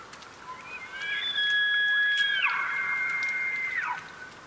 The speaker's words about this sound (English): I thought of an evening under a thicket of cottonwood, the leaves making a soft rattle, and then the bugle of an elk.